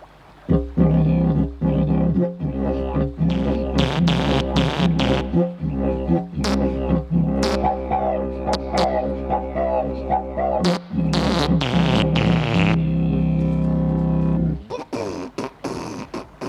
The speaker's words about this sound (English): If I'm doing a show and I'm playing the didgeridoo, when the dancers are dancing, I do a little boop. Boop. That cues them boop. To go on to the next step.